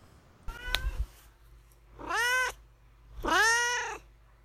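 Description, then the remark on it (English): A cat named Duarte meows twice, drawn-out and wavering, after a brief thump or rustle; the two calls are evenly spaced with short pauses and no talking. “All right, and now we will move on to Duarte's Corner, where my cat Duarte will give his opinions about the book.”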